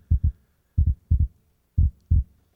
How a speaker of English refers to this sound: Two heartbeats. But when they come together, the heartbeats sync. Here you are all alone in the world. And God comes. And when he comes, there's another heartbeat.